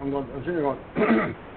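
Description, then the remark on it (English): A person clears their throat: a voiced, rumbling hum followed by a harsher, raspy burst. The sound is moderately loud and lasts about a second and a half. “you know, just to clear my throat a little bit.”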